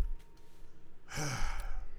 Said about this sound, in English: You breathing hard? I'm trying to compose myself.